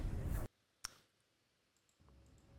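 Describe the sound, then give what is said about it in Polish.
Crackling campfire: a short rushing burst of noise, a single sharp pop, then a quiet, low rumbling hiss with a few faint ticks. “Słuchajcie dźwięk tego ognia.”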